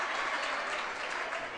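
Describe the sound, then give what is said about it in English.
A crowd claps steadily at a basketball game, a dense, continuous patter of many hands that stays at an even loudness throughout, with no voices standing out. “I don't cheer often, but dang it, we left our heart on the floor tonight, and now it deserved a clap.”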